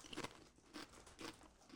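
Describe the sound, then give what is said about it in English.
Repeated crisp crunching of potato chips being bitten and chewed, in several bursts roughly half a second apart, fairly quiet with no talking. “I don't know about this crunching, guys.”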